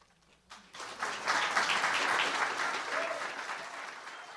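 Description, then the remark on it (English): An audience breaks into sustained applause after a brief quiet start, following an acceptance speech for the 2023 Lifelong Learner Honor; a dense wash of many hands clapping that swells within a second and holds steady, fairly loud. “And as the crowd shows their appreciation”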